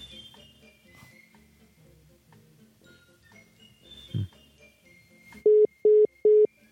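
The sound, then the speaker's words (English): An iPhone's call-failed tone after dialing the telephone time service: three short, loud, identical beeps in quick, even succession, following several seconds of quiet background rustle and faint hum. “Call failed.”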